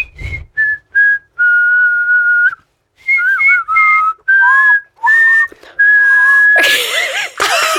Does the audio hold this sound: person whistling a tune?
yes